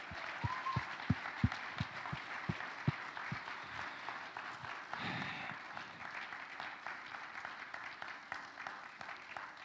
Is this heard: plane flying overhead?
no